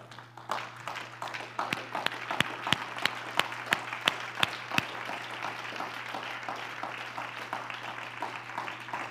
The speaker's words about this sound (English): I think it'd be fitting if we stood tonight and gave the Lord a hand clap of praise.